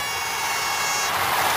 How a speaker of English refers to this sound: Give me back to the BBQCS sound effects right now. Get ready for an air horn.